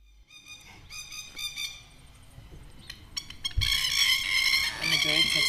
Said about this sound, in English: The birds have spoken.